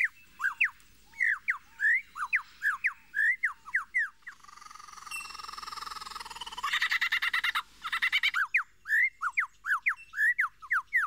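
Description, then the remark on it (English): A lyrebird sings its mating song, a string of calls borrowed from other birds: quick repeated rising chirps, then a long buzzing, rattling passage, then more sharp chirps. Loud and alone. “It has no mating call of its own, but rather makes its song from a collection of other birds' calls, which the lyrebird hears, learns, and repeats as its own.”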